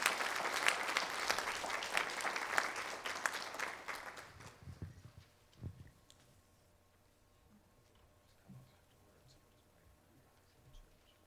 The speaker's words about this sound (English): So let's give them a round of applause as you guys come on up.